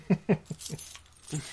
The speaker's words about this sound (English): Jingly keys so I can pop my top.